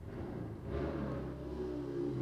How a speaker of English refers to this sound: Is that our guy? I don't think so. Is that our guy? Motorcycle guy.